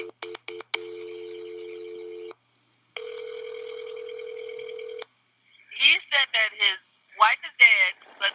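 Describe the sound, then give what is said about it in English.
A quick series of telephone dialing tones as someone calls a supervisor, then a steady ringback tone that sounds twice before a voice picks up and begins speaking, heard as if over the line. “Let me get my supervisor on the phone.”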